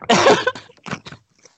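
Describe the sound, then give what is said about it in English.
Dot matrix planning paper being torn, held up to a microphone: a loud, ragged rip lasting under half a second, then a few shorter crackly tears that trail off into quiet, with no talking. “He's gonna tear a little. I can hear it.”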